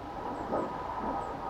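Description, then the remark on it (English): A massive jet plane roars over a house in a steady, broad rushing drone that swells slightly midway and holds without a break, with no voices. “There's a massive jet flying over the house.”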